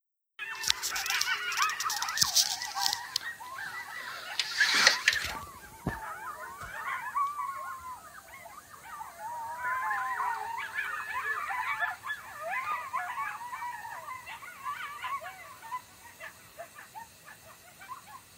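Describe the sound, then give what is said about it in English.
A pack of coyotes screams and yips in a chaotic chorus, high wavering howls and sharp cries overlapping continuously, with a few harsh bursts early on, loud throughout. “I don't think I've ever heard a coyote scream.”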